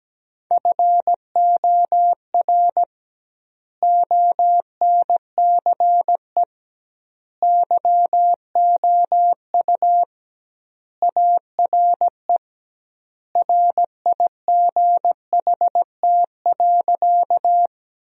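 Morse code beeps on a single steady mid-pitched tone, keyed at 17 words per minute in quick dots and dashes that cluster into word-like groups separated by clear pauses with double word spacing, sending sentences built from the 300 most common words, with no voices.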